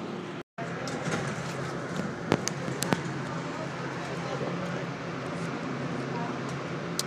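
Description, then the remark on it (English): Busy subway station ambience: a dense, echoing wash of crowd murmur and low rumble, steady throughout, with a few sharp footstep-like clicks as someone walks down into the subway. “I'm about to go down in the subway here.”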